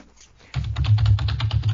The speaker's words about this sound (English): Sorry, it's always that loud no matter how gently I type on this keyboard.